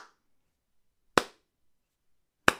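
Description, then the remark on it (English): A slow clap from one person applauding themselves: three sharp, crisp hand claps spaced evenly about a second and a bit apart, with silence between them and no talking. “Oh, should I slow clap?”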